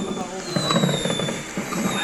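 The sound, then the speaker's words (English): Fireworks crackle and pop in a steady, noisy burst against a busy background, with a thin high whine running throughout and a faint voice somewhere beneath. “All we hear is fireworks.”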